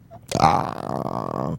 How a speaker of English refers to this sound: I burped, by the way, folks. That was good.